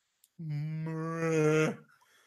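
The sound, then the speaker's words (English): A person imitates a cow with a single sustained, low moo lasting over a second, swelling louder before cutting off, clear with no other talk. “Making cow noises.”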